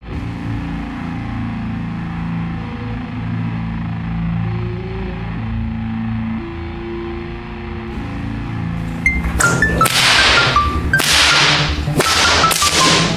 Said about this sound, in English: The really surprising thing about a whip the first time you hear one cracking is just how incredibly loud it is. And what's more spectacular is the fact that all of the noise comes from the very tip of the cracker on the whip.